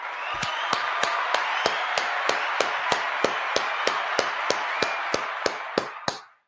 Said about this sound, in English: I'm just going to once again clap it up, man.